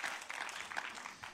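An audience applauds together after a prayer, a dense, steady wash of many hands clapping at once, fairly soft and even throughout with no single claps standing out.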